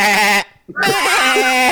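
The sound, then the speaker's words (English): A person imitates a sheep, giving two loud, quavering bleats separated by a brief pause, the second one wobbling noticeably in pitch. “What about a sheep?”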